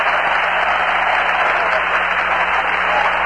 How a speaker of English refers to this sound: Seaver back to the dugout with another ovation.